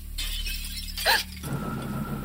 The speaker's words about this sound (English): I'm halfway to the bathroom when the sound of glass breaking downstairs freezes me in place.